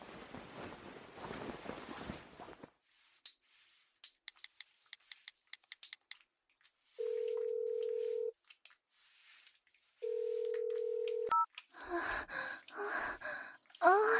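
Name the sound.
telephone being dialed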